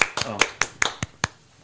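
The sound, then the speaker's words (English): A person claps for themselves in a quick run of about seven sharp hand claps at a steady, brisk pace, with a faint voice briefly underneath the first few, then fading to quiet. “Don't clap for yourself.”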